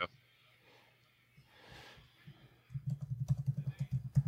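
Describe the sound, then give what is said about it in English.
Rapid, steady clatter of typing on a computer keyboard as someone searches Google for a former Minnesota Vikings fullback, fairly loud, filling the second half after a quieter stretch with soft breathing and a sniff. “Sorry, listeners. I'm typing.”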